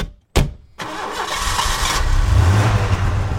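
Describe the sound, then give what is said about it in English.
A car engine cranks briefly, then catches and settles into a steady idle with a low rumble. No one speaks. “Two kids are sitting in the back of the car and their mum's driving them to the beach for a holiday.”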